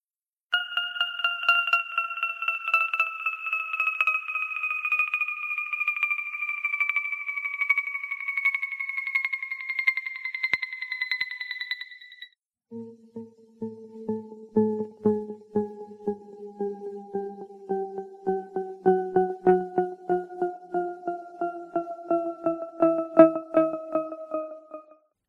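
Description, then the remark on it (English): Layered electronic tones glide steadily downward in pitch, creating an endless falling effect. About halfway through, a brief break cuts in and the tones resume at a lower register, pulsing slightly as they keep sliding. “it certainly sounds as if the tones are falling, perhaps in their long descent to the bottom of the ocean. In fact, they're actually rising in pitch.”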